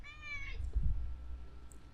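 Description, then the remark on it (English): A male cat gives one short, high meow at the start, then a low, steady purring rumble continues underneath until the end, soft and even. “Listen to his purring.”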